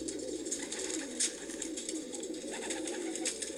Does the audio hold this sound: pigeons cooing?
yes